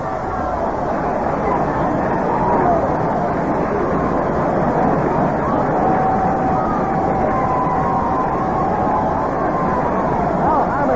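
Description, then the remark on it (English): A stadium crowd roars steadily after Herman Killebrew's 437-foot leadoff home run to deep center field off Cuellar for Minnesota in the bottom of the fifth inning, a dense, unbroken wash of cheering that stays loud for the whole stretch, with faint whistles rising out of the din. “Cuellar going way back, and this ball is out of here, and a home run for Herman Killebrew, and some crowd it is.”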